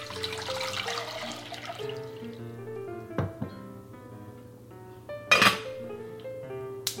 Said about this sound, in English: So the water is now boiling.